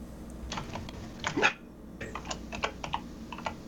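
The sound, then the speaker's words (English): Rapid clicking of keys on a computer keyboard, a quick irregular flurry of taps with brief pauses, moderately loud, with no voices present. “I'm just typing that out.”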